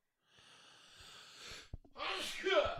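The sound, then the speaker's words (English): A single loud sneeze: a rising breathy inhale builds for over a second, then a sharp catch and an explosive, hissing burst of air. “Oh my God. Sorry. Bless you.”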